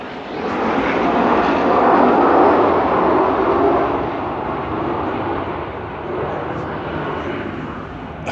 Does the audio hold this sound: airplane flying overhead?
yes